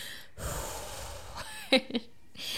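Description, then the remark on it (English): A person demonstrates the deep calming breath a 2-year-old child takes: a long, airy inhale lasting about a second, followed by two quick, breathy voiced puffs as the air is let out. “They both breathe. My 2-year-old's funny now. If she thinks I'm getting a little bit worked up, she'll look at me and she'll go.”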